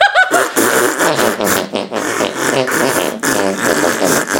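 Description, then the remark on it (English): Loud fart noises play one after another at shifting pitches, forming the bouncy melody of a song. The buzzy tones run almost continuously for several seconds with no talking. “There's a million ways to fart, no way is a wrong way.”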